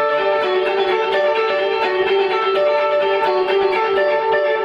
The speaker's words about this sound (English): Now we can listen to how that sounds with the echo effect.